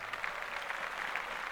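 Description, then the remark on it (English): A steady burst of hands clapping, a dense patter of many quick claps blending into applause, fairly quiet and constant throughout, with no voices. “Speaking of that, let's clap that up for Women's History Month.”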